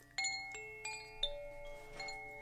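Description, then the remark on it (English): Small chimes ring out in several bright, overlapping strikes, their clear metallic tones sustaining and shimmering as each new note joins the last. No voices. “They're beautiful little chimes.”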